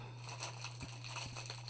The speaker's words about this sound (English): Crinkle, crinkle, crinkle. There's an amazing amount of plastic in that paper. Yeah, there is.